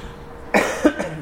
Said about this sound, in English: I'm going to cut out all these times I cough.